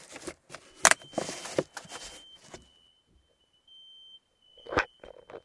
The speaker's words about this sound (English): So the fire alarm just went off, and dude, all the rats just started moving down here. It's a little bit f***ing freaky. There it goes again.